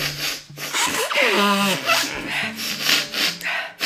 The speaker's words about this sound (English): Okay, you didn't see her face, but man, she was sniffing the crap out of that microphone. Just blow your damn nose.